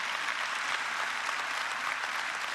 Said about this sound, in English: Guys, 7 days ago, we were in this room, or you were watching online, wherever you find yourself, we had the largest baptism weekend in the history of Milestone Church. Yeah, that's something we can clap about.